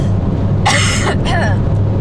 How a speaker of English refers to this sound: Well, I was... sorry, excuse me. I'm going to cough again.